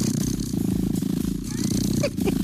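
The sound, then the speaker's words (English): A recorded cat purr played from a website for stress relief: a steady, continuous low rumbling hum with a faint rhythmic pulse that carries on without pause through the whole stretch. “Just cat purring.”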